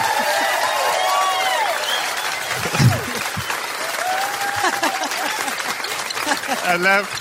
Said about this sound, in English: Ladies and gentlemen, please, you've been more wonderful than I could ever have dreamt. Really? Will you do a round of applause?